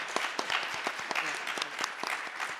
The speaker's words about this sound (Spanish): Entonces, me gustaría que la pudiéramos recibir con un fuerte aplauso, por favor.